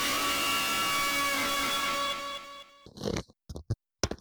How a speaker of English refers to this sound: Kind of sounded like he just turned into a rat and started chewing on his microphone. Who's chewing?